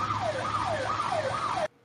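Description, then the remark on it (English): A loud alarm siren wails in quick rising and falling sweeps, about four cycles in under two seconds, over a steady rushing noise, then cuts off abruptly. “Yeah, I don't think that alarm's going off anytime soon.”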